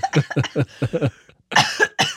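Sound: coughing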